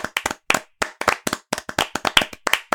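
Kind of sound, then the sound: crowd, group clapping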